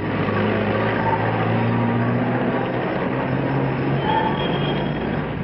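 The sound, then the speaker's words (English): A steady, continuous wash of train station ambience outside the station as a party carries baggage to two cars, with a low mechanical rumble and hum running throughout at an even level, and no one talking. “The returning party takes their baggage to two cars outside the station.”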